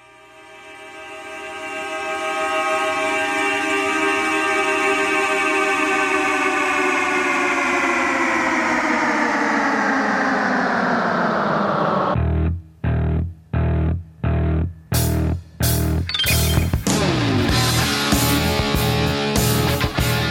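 Car horns, slowed down by a producer before being added to a rock song, swell into a long, thick, droning blare whose pitch sags gradually lower, then give way to loud distorted chord stabs in a stop-start rhythm before a full rock band crashes in.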